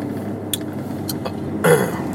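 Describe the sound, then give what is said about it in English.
A single short burp near the end, moderately loud, heard over a steady low rumble of a moving car's interior while driving through Coldwater Canyon, with a few faint clicks before it. “Let's see, burping now, just keep going.”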